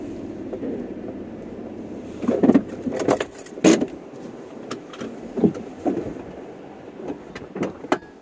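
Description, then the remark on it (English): Steady low rumble of street traffic in the background, with intermittent sharp metallic clinks and jangles; no one speaks. “Leave you with a bit of peace and quiet. Watch the traffic for a minute.”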